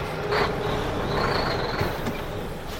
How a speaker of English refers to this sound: Truck.